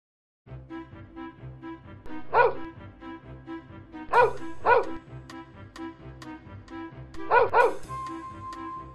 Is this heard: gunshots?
no